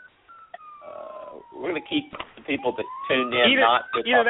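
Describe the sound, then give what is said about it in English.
The siren of a fire truck rolling by wails with a long, sliding pitch that falls and then rises again, steady and fairly loud beneath a man talking over it. “I got a fire truck rolling by here.”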